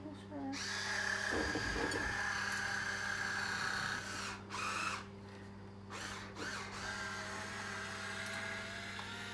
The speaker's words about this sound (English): They got me this electric wine opener. For my bridal shower. Never used it before, so we'll see.